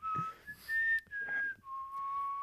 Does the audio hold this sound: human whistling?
yes